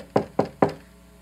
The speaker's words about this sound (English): So the first one, this one right here, goes out and builds his house out of straw. And then gets a knock on his door.